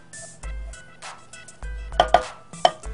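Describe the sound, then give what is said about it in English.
A good sharp knife chops through a whole chocolate bar, starting at the corners, giving a few sharp, crisp cracks on a cutting board in an uneven rhythm, with softer knocks and thuds between them and no talking. “while I'm showing you how to chop up the chocolate”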